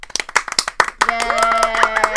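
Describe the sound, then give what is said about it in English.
A quick burst of sharp, uneven hand claps, then a high cheering voice rises and glides over the continuing clapping. “Everybody clap.”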